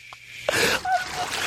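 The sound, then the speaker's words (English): A sudden splash of water is thrown on a woman's face in a studio, followed by a second of hissing, spattering noise mixed with a wheezy, gasping breath. “Eric's over there splashing water on her face”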